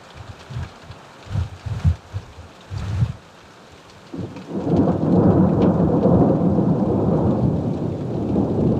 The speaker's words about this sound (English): And that's why I stop and swim in the lake and sit under this boulder and watch this rain.